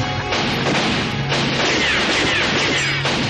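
A loud, chaotic burst of rapid gunfire and crashing impacts from a movie shootout, dense and continuous for a few seconds, with no voices audible.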